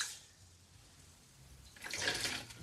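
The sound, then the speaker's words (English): Rice being washed by hand in a bowl of water, mixed together with the fingers as starch rises from it: a soft swishing at first that swells into louder sloshing and splashing toward the end. No one speaks. “So I like to kind of mix it together in the bowl with my fingers.”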